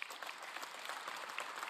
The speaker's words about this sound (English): Now, I tell you that. You can applaud that.